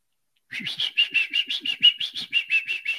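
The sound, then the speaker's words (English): A person whistles an imitation of a cardinal's song: a quick, steady run of about a dozen bright, clear chirping notes, loud, after a brief silence. “Oh, what sound does a Cardinal make?”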